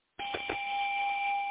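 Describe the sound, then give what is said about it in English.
A bright bell chime, the first-time caller bell on the Angel Healing House Blog Talk Radio show, rings out clearly. It is struck a couple of times in quick succession, then holds a steady, sustained ringing tone to the end. No one speaks. “You get this? First-time caller bell.”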